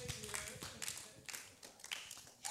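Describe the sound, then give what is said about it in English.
Scattered, uneven clapping from a crowd, fairly soft, with a faint voice murmuring underneath at the start. “Oh, you didn't clap for yourself.”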